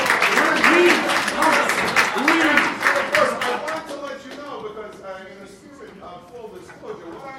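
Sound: audience round of applause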